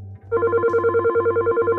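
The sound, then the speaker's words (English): An electronic telephone ringing, a loud trilling tone that pulses rapidly and steadily after a brief moment of low hum at the start, with no one speaking. “So I use that as inspiration, and I got this sample of a phone ringing.”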